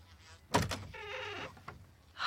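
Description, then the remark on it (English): A quick, loud cluster of knocks on a door, then a drawn-out creaking tone and one softer thump. No voices are heard. “You want to try knocking a little louder so the whole town can hear you, hmm?”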